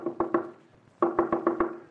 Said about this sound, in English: Sounds just like the way the headless plowboy knocked on Judd Claiborne's door during the Civil War, daughter.